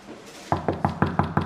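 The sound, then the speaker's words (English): Six firm knocks on a wooden door in a steady, quick rhythm, fairly loud, starting after a brief quiet moment with no talking. “Yeah, you knock. I can't do it.”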